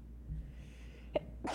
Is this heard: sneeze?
yes